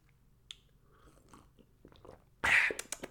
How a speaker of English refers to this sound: Quick sip of water. Water break, balls. Don't mind me, balls.